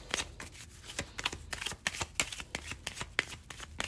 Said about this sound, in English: We don't take jumpers in Lenormand, so I'm just going to give it a couple more shuffles.